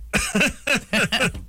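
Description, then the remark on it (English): A quick run of about five harsh, throaty coughs, fairly loud, coming in rapid succession with brief gaps between them and no talking. “I just started coughing when I thought about how the boss is going to yell at me about the budget.”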